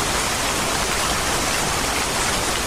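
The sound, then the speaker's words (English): A dense, steady hiss of heavy rain pours down without a break in the middle of a forest fire, loud, with a broad wash of noise and no voices. “You know, here we are in the middle of a forest fire and then it's raining buckets.”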